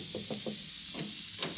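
Three quick knocks rap on the door of a publisher's office on the 40th floor of a New York City skyscraper, evenly spaced, followed by a soft click and shuffle, all set against a steady background hiss.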